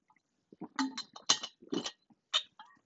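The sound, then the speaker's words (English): Someone gets and drinks a glass of water: a handful of short, bright glassy clinks and knocks in uneven bursts, fairly quiet, with no one talking. “Let me get some water, see if I can say it a little better.”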